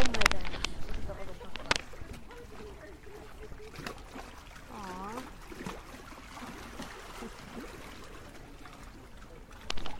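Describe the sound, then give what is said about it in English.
Small waves lap and splash against the shore at Tribunji, heard from a walkway just after sunset, in a steady, uneven wash of water with a few sharper slaps standing out and a faint voice briefly audible partway through. “Those are the waves lapping against the shore in Tribunji.”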